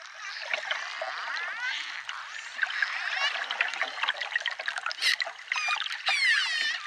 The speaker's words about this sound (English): That would be a dolphin.